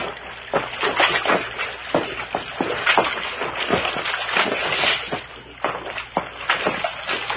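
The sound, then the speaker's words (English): Steady sloshing and splashing of feet wading through shallow, deepening creek water over rocks in a ravine, with repeated uneven splashes and a continuous watery churn throughout. “Water's getting a little deeper along here.”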